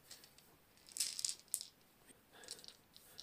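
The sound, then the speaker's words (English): Dice rolling and clattering into a game box, two short bursts of bright rattling clicks with a brief pause between them, with no talking. “Yep, that box is ideal for rolling dice into as well.”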